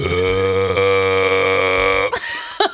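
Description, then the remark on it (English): A long, loud, drawn-out burp after eating a small egg bake, sustained with a deep, buzzy tone for about two seconds, followed by a couple of short vocal sounds. “I just had a little burp sesh.”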